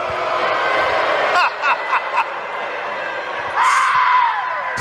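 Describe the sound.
A man lets out a loud, drawn-out yell imitating a singer's "Ow!" near the end, its pitch sliding downward, over steady crowd-like background noise with a few sharp bursts earlier.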